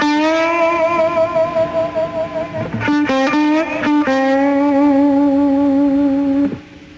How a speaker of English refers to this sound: Here the reporter goes, I can't believe what I just heard. How you bent those strings and made it vibrate, the vibrato he's talking about. Can you do it again? Could you just do that again?